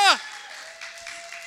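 A short falling vocal cry gives way to soft, scattered clapping from a group, a thin steady tone humming underneath throughout.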